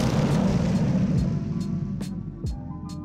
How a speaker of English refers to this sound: Let me get a bomb drop, please.